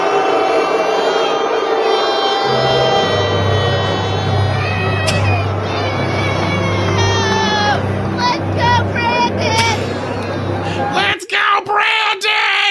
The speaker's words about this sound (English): But here you go. Here is Jill Biden being booed.